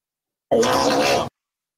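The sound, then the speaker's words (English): A voice imitates a fart-queef combo, a single buzzy, sputtering blurt about a second long, starting with a low pitch and breaking into raspy noise before stopping abruptly. “T-Nana-W-O, can I get a fart-queef combo?”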